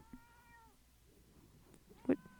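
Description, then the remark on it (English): A female cat that has just pushed a door open meows twice, a drawn-out tonal meow followed after a pause by a shorter, louder one, with no talking. “And now she's meowing at me.”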